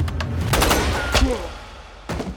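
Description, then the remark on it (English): Several sharp, loud gunshots crack out in an irregular volley during a bank robbery as Makeley shoots the head teller, each a sudden harsh burst, with a brief cry-like tone after one shot and a low rumble running underneath. “Overtaken by fear, the head teller instinctively turns his back to Makeley to run, but Makeley shoots the man.”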